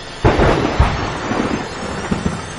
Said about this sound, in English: Jerome, turn up the atomic generators. We must have a full power. Turning up the generators, Dr. Kathmandu.